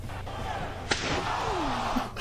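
A chair-hit sound effect played from a soundboard: a sharp, loud metallic smack lands once, like a folding chair hitting someone, followed by a brief ringing tail and a faint whoosh against a steady background hum.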